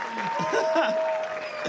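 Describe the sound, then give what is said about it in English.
An audience at a live stage show applauds steadily for a couple of seconds, a dense wash of clapping with a few voices and cheers mixed in, sustained at an even level throughout. “Everyone, clap your hands.”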